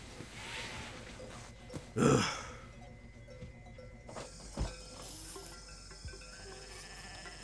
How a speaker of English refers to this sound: What is it, you goddamn goats?